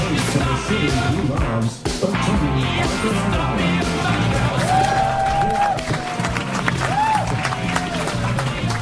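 A large crowd claps and cheers loudly and continuously, a dense wash of applause with shouts and a couple of sustained whistles rising above it.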